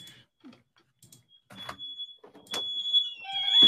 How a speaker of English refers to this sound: 1 second, the fire alarm's going off, so I'll be right back.